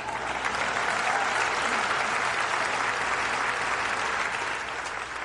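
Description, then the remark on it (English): A large audience claps for an unnamed, nonviolent, grassroots movement, about five seconds of dense, even applause that holds at full strength and eases slightly at the very end. “This unnamed movement, you can clap for that.”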